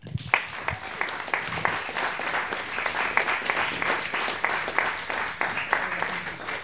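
An audience at a storytelling show applauds a storyteller and themselves, steadily, a dense wash of many hands clapping at a fairly even loudness for several seconds, with a few sharper individual claps standing out from the crowd.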